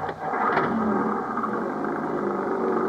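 An old Jeep engine revs and pulls away, a steady mid-pitched motor roar with a brief rising surge near the start, loud, with no voices.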